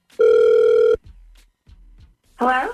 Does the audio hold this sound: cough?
no